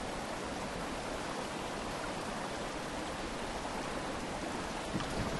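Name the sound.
flowing stream water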